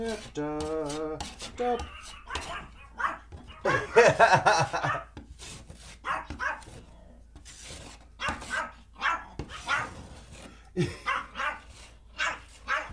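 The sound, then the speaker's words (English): Dogs bark repeatedly in short, irregular, loud bursts, with a few higher yips mixed in and brief pauses between volleys. “And that is our dogs.”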